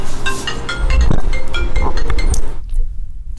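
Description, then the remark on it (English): A man's mobile phone rings during an interview with a bright, chiming ringtone of quick repeated high notes over a busy background murmur, then cuts off abruptly, leaving near silence. “So, at that portion of the interview when his phone rang, I stopped for a minute.”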